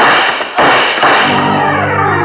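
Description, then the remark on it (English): Two loud, sharp gunshots are fired up a spiral staircase about half a second apart, each trailing into a long reverberant tail. No one speaks. “He made it to the staircase, and then the noise came. A couple of bullets flew up the spiral and caught him in the chest.”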